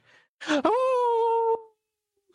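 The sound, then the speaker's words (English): A person mimics a wolf howl: one loud, drawn-out vocal wail that swoops upward after a breathy start, then holds a steady pitch for about a second before cutting off. “That sounds like a wolf.”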